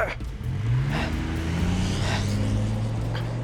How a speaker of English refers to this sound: The third shot missed, and as McElroy was reloading, Romaine climbed back into the truck and floored it out of there.